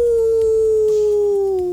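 A single long wolf howl sound effect, loud, holding one drawn-out note that slowly sinks in pitch before breaking off, with a low background rumble underneath.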